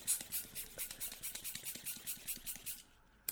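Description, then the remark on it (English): A pink balloon is blown up to make a stingray balloon animal, with quick, rhythmic hissing bursts of air, about a dozen strokes, before it suddenly stops. No one speaks. “Ready? Blowing it up.”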